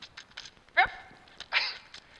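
A dog lets out two short, sharp barks about a second apart, moderately loud, over a quiet, faintly noisy background.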